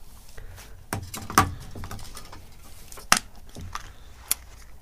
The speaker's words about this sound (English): Time to open up the Kinder Surprise. What is inside?